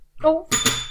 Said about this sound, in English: My God. The ending of that TV show. Can you ring the spoiler bell?